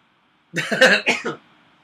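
A loud sneeze made of several quick breathy bursts in rapid succession, lasting under a second, with no talking around it.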